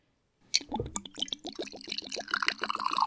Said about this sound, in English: This is just good stuff here. Oh, Those are some strong pours, too.